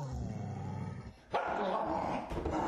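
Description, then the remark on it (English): A person mimics chained dogs jumping and barking, making loud, rough, continuous vocal bursts, with a brief pause midway before the frantic growly imitation resumes. “The dogs jump at you.”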